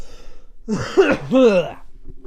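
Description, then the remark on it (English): Two rough, harsh coughs in quick succession, fairly loud, with a throaty, strained quality like a chesty cough or hard throat clearing. “I am coughing like my lungs are about to come out.”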